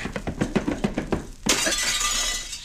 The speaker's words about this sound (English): Cisco hit that Jumbo Maverick so hard, he goes through the window.